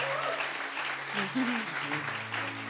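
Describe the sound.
An audience applauds after a prayer at a bilingual English-Dutch church service, steady, dense clapping that holds at an even level throughout, with a low sustained tone and faint voices underneath.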